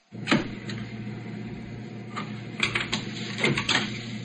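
A pencil is dropped after marking the spot for a cut on tape at a tape machine, making a handful of light, sharp clicks and clatters scattered over a few seconds, heard over a steady low mechanical hum with no talking.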